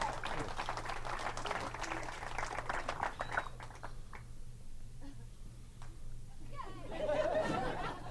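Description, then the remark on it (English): A comedy show audience in Las Vegas claps together, the applause dense for a few seconds before abruptly thinning to a few scattered claps, then murmured voices and light laughter rise near the end. “You guys stopped clapping so quick.”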